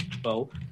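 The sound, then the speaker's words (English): Loud computer keyboard typing, a quick run of clacking keystrokes, with a voice speaking over it partway through. “I hear really loud typing.”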